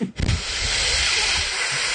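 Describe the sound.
A person imitates a Canada goose's hiss: a sustained, harsh, breathy hiss lasting nearly two seconds, loud and steady after a brief throaty onset, with no other talk.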